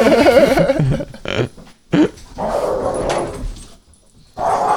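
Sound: dogs barking and whimpering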